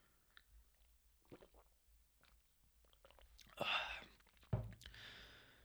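Drinking water: after a quiet pause, a soft slurping sip of water, then an audible gulp and a breathy exhale. No one talks.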